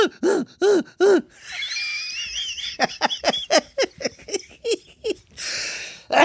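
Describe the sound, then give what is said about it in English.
A voice imitates a barking seal, doing an impression of the character Che Diaz from And Just Like That having sex with Miranda in the kitchen: three loud, hoarse barks, then a high, wavering squeal, then a quick run of eight or so short, rhythmic barking gasps that ends in a breathy huff. “It was like a barking seal.”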